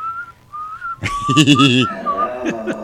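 A person whistles a thin, wavering tune of short gliding notes, briefly overlapped by a louder, richer burst of voice-like sound in the middle before the whistling carries on.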